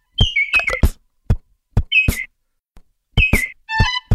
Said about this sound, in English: All right, what's next in the Madagascar rainforest? The next one is the lesser Vasa parrot.